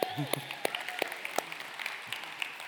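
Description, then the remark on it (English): An audience claps for a nervous girl who came out on stage during a talk for Christian parents, a scattered, irregular patter of sharp hand slaps that runs steadily for a few seconds at moderate loudness, with a brief voice sounding faintly at the start. “We should clap for her.”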